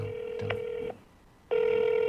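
A phone ringback tone purrs steadily, pauses for about half a second, then resumes at the same level, clear with no voices over it.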